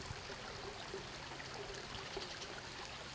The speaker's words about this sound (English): It flowed between two mossy stone walls. It's in the Hudson River watershed. It's definitely kind of your quintessential babbling brook. You can hear it babbling.